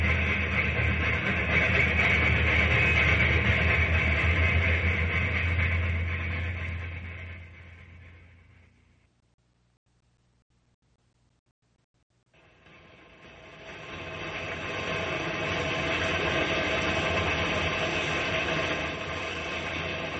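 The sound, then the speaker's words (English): An old locomotive engine chugs and rumbles loudly in a rainstorm amid a steady wash of rain noise, fading out to near silence for a few seconds before the heavy rumble swells back in. “We're just a couple of guys plunking along in an old engine in a rainstorm.”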